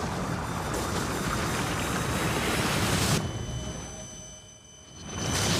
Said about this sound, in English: Okay, underground laboratory is flooding for some reason.